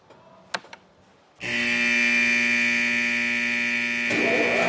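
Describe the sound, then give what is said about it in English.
A couple of faint clicks as a big red button is pressed, then a loud warning siren abruptly starts blaring as the Miller company's enormous new beer canning plant comes to life, holding a steady, buzzy, unwavering tone to the end, with a brief burst of extra noise near the finish. “A warning siren blares as the enormous canning facility comes to life.”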